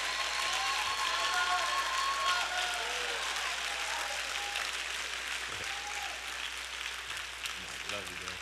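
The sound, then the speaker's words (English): Loud, sustained applause as a business owner comes to the stage, with excited cheering and several high, drawn-out screams and whoops from his wife and daughter rising above the clapping. “All that noise y'all heard back there, that was his wife and daughter, all that screaming.”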